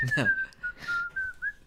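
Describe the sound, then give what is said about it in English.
A person whistles one steady, sustained tone that wavers slightly in pitch, clear, with a brief burst of voice at the start and soft breathy noise around it. “I can do like a single tone, and that's it.”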